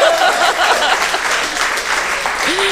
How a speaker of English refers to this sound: Applause will get you everywhere.